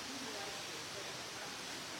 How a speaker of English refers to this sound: As you can see, we had rain. It's kind of nice and moist green. We had rain. So when the water comes from waterfall, look at these magnificent leaves. It's trickled down to this moving water, and then it goes.